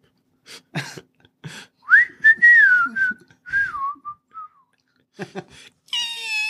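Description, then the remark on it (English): A person whistles a sustained, wavering tone that rises and slowly glides downward, imitating a creature's whistle in flight. Breathy mouth sounds come before it, and a brief high squeak follows. “They also make whistling noises as they fly.”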